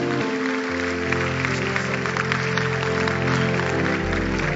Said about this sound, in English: Clap your hands.